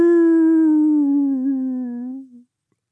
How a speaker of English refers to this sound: The wolf howled again, much louder.